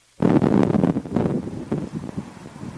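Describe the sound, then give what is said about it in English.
Strong wind gusts of up to 40 kilometres an hour, in hot, dry weather at a wildfire, roar and buffet the microphone in a loud, continuous rush that surges and eases, with a deep rumbling low end and no voices. “As you can imagine, these weather conditions quite challenging for crews with wind gusts of up to 40 kilometers an hour.”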